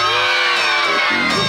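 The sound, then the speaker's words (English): A group of voices screams together loudly and continuously at the secret word on Pee-wee's Playhouse, a sustained, shrill burst of excited shrieking that fills the whole moment. “Why is everyone screaming? It's a secret word, Rusty.”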